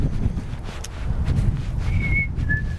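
A short two-note whistle, a higher pitch followed by a lower one about a third below, clear but not loud above steady rumbling outdoor wind noise; nobody speaks.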